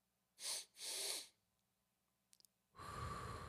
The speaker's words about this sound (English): If you can slow down and just take a second to just breathe, try to calm yourself down. If that doesn't work, there's other methods of breathing that you can do. Breathe in twice.